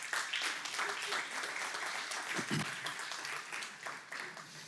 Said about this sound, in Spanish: Les damos un aplauso.